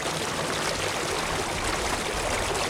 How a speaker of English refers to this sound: Especially in Ollantaytambo. Here, water from the river of the same name rushes through town and stone-lined irrigation canals.